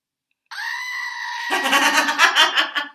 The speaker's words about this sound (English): Here, to make the goat scream to get your pain out.